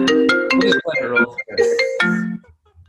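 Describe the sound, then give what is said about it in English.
A mobile phone ringtone on the speaker's husband's phone plays a bright, electronic melody of short stepping notes, fairly loud, running for a few seconds before cutting off into quiet. “my husband's phone, sorry.”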